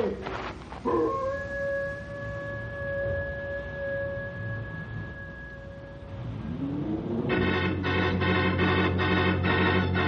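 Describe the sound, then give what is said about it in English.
A lot of wolves running around howl in a long, steady, mid-pitched wail that holds for several seconds, followed by a rising howl and a louder, throbbing chorus of overlapping cries that fills the end. “All I can see is a lot of wolves running around down there.”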